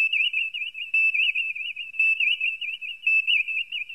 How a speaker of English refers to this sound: Crud the phone. Hang on, please.